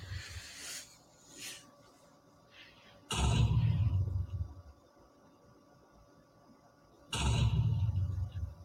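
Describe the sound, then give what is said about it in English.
Fireworks going off: two loud, deep booms about four seconds apart, each with a rumbling tail that lingers, after a few softer hissing bursts at the start. No one talks. “Sounds like fireworks are going off.”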